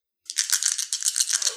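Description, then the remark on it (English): Dice rattle briskly for about a second and a half, a dense run of sharp clicks and clatters that starts abruptly and trails off into a final settling tumble. The dice are rolled for a wits roll in a tabletop role-playing game and come up showing two 3s. “Give me a wits roll.”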